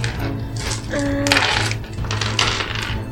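Dice clatter and rattle across a hard tabletop in several quick bursts as players roll for stamina and athletics, with small clicking impacts and a low hum and faint murmur of people in the background.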